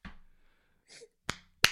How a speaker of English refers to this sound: That's just her clapping.